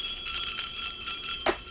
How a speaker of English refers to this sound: Oh, I wonder if that's really loud. Sleigh bells, y'all.